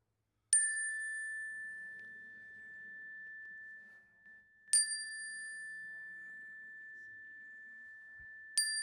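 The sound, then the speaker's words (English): A bright chime is struck three times at slow, even intervals during a prayer in a sanctuary, each clear ring sustaining and overlapping into the next, with only faint room noise underneath. “Whatever or whoever you're carrying in your heart, at the sounds of the chime, let's pray their names into the sanctuary.”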